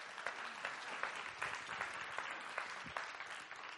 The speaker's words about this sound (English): Yeah, now we're clapping.